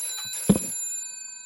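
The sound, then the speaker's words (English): A single short burst from an old GPO 746 rotary telephone bell, a sharp metallic clang that leaves bright ringing tones hanging in the air before fading. No one speaks. “It just reminded me that I had my phone here, because I think I can see a phone in the background of your screen now.”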